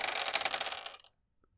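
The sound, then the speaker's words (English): Fate dice rattle and clatter across a hard surface for about a second, rolled to try to beat a 3 and landing on three negatives, then settle to silence, with one faint tick afterward. Fairly loud, with no talking. “Well, my dice like me as much as Mike's do.”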